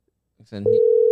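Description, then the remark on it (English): A brief murmur of voice gives way to a steady, unbroken electronic telephone tone that holds loud and even through the rest of the moment, like a call ringing on the line. “There it goes. It's ringing.”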